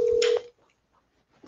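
A telephone call to a caller being dialed: a single loud, steady phone tone lasting under half a second with a brief crackling burst over it, then near silence with only faint low murmurs.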